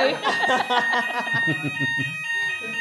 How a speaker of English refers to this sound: But for people who want a little bit more and who like some of our quirks, 2 o'clock fire alarm.